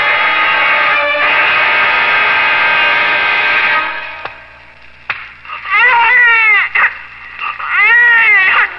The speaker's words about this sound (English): No sound quite so beautiful before. No sound so full of promise, so full of hope. A skillful slap by the doctor, and my son was thrust into the world with a lusty cry of protest.